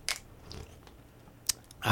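food or drink, sipping a drink

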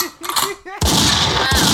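sound effect, gunshot sound effects

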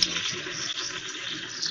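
household object, water running

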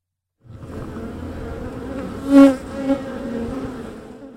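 insect, honeybee colony buzzing

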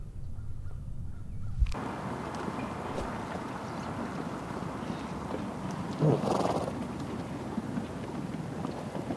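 animal, donkey braying

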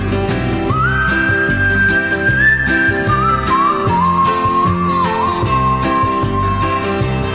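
human body sound, whistling a hymn melody

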